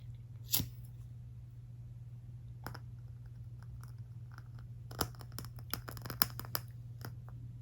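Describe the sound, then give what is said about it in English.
A freshly lit candle crackles with sharp, dry pops, sparse at first and then bunching into a quicker cluster of small snaps, all quiet over a faint, steady low hum. “I love that crackling sound, it's so good.”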